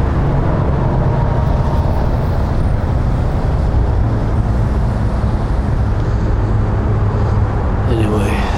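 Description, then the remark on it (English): A steady, dense roar of road traffic in an underpass, heavy low rumble with a constant loud wash of noise throughout, and a brief high squeal rising near the end. “I guess it's an underpass. If you were on top of it, it would be an overpass. Down here is the underpass.”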